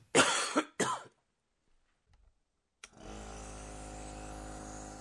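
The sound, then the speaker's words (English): Two harsh coughs, a short silence, then a nebulizer machine switches on and runs with a steady, buzzing motor hum that continues to the end. The nebulizer is being used to help regain the ability to breathe during an asthma flare. “Do you hear that sound? That's my son's nebulizer machine helping me regain the ability to breathe so I could get back to sleep.”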